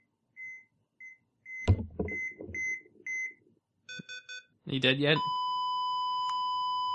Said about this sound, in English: What? Why are you beeping?